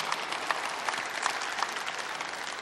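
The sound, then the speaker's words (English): An audience claps steadily for a few seconds, a dense wash of many hands with a few sharper individual claps standing out, and no voices over it. “You guys can clap for those guys.”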